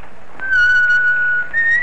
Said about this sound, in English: He rode along at a leisurely pace and whistled as he went.